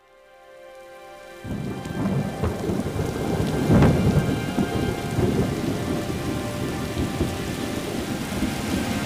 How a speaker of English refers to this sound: I haven't seen it rain this hard in a long time. Well, I guess God said he's going to bless the earth.